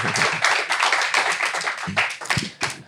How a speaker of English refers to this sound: Can we give a big round of applause for Yvonne Turner?